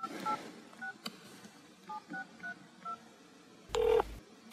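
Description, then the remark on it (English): A quick series of telephone keypad tones, about eight short beeps at an uneven rhythm, as a call is placed to reach Judge Updike at Bedford Circuit Court, followed by a louder burst like a line connecting or a ring starting. No one speaks. “I'm going to give Judge Updike a call and see if he'd be willing to speak with us about this case.”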